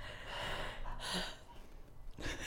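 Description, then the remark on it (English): Slow, audible breaths drawn in and pushed out through an open throat during a breathing exercise, a broad airy rush swelling and fading in a few cycles, fairly quiet with no talking. “the first thing I've got to do is I do this big smile like that, and then I gotta imagine my throat is opening up, and then I gotta breathe, and I gotta breathe, because apparently, like, when you do that and you breathe, that's open.”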